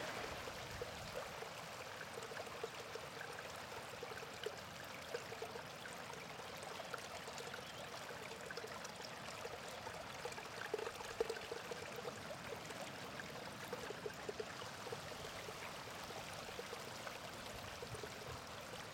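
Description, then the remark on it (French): Steady rushing of river water at Wismille flowing over rocks, a continuous babbling wash with no pauses, filling the scene evenly from start to finish. “Premier choix, c'est la rivière.”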